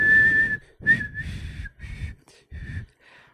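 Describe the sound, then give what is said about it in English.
A person's feeble, breathy attempt at whistling in several short bursts, the thin tone wavering and mixed with loud airy breath noise, with no one speaking. “That's my whistling.”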